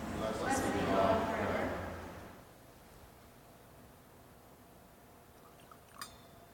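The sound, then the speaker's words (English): Water is poured into wine in a vessel for about two seconds with a soft splashing trickle, then stops, with one faint clink near the end. “By the mystery of this water and wine, may we come to share in the divinity of Christ, who humbled himself to share in our humanity.”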